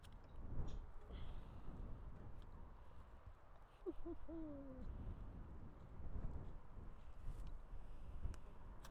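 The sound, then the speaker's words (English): Wind buffets the microphone in a constant low, rumbling roar that surges and fades in gusts, with a brief hoot-like call rising briefly through it midway. “Windy.”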